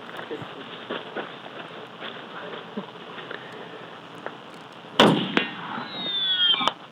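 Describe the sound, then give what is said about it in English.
A tumbling bullet ricochets back and strikes a person's plastic hearing protection, knocking it off: one sharp, loud crack, then a high, buzzing whine that slides downward and ends in a short snap, over a steady low background hum. “Oh, you can hear it hit dude.”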